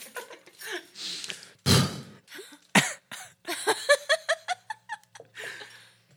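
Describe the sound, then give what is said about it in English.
Someone vocally imitates a queef: two sharp, breathy blasts followed by a quick run of fluttering, sputtering pulses, with laughter and giggling mixed in. “Is that what you think a queef sounds like?”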